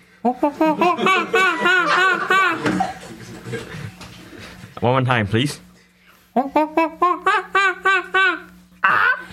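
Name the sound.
person imitating a monkey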